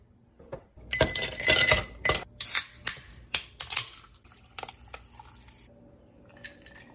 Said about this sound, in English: So I am going to put some ice in a glass, cool it off that way.